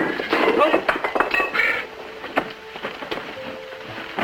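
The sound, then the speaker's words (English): A jumble of clinking, clattering knocks as equipment knocked over by Bell while building the telephone prototype tumbles and strikes itself, loudest in the first two seconds, then a few scattered bangs and rattles trailing off. “While building the prototype, Bell knocked over some equipment and called for his assistant, Thomas Watson.”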